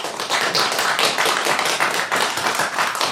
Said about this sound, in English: And if you think that Red Sonja Redemption have a stronger argument, clap now.